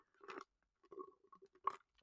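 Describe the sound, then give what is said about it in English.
Someone slurps the last of a Diet Coke in three short wet, gurgling sips with brief pauses between them, fairly quiet, with no talking. “That was like the last little sip of my Diet Coke, and I was so worried it was going to go, but it didn't.”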